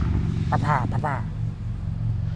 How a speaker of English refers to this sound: There's a loud car going by.